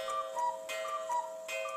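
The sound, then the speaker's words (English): A cuckoo clock ticks steadily with a quick, even tick-tock over a faint sustained ringing tone from the mechanism. There is no talking. “It's not clear who built the first cuckoo clock, but whoever it was, they weren't in Switzerland when they did it”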